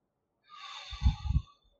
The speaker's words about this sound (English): So breathe in through your nose.